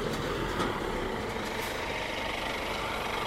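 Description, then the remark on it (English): A heavy truck stopped on the road rumbles, its engine idling in a steady low drone while it lets someone cross the road, with a few short hissy bursts near the start like air brakes releasing. No one speaks. “This truck lets me cross the road, very kind of him.”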